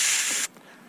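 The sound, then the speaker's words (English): A single short, loud hiss like an aerosol spray can, made by a voice imitating the spray, lasting about half a second before cutting off abruptly into quiet. “you take it outside and spray it with your clothes on a hanger or something, right?”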